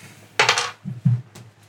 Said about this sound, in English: So, roll the dice, Tim Byron. Let's do it.